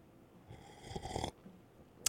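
A single airy slurp of mediocre coffee from a cup, lasting under a second, followed after a short pause by a sharp little click, like the cup being set down. No one speaks.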